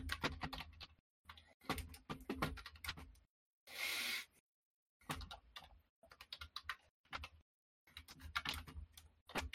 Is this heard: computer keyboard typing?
yes